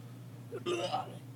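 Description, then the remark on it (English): A voice imitates, as Foley, soft retching coming from one of the rooms: one short, throaty gagging burst lasting under a second, fairly quiet, over a steady low hum with no words spoken. “You guys hear some soft retching coming from one of the rooms.”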